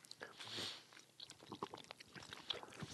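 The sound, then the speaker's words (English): Wet chewing sounds with irregular sticky smacks and crunchy clicks, someone working through a hard, chewy gummy candy with no talking. “They're like harder to chew. They're harder to chew. You're working your for this one. Your jaws are doing some work.”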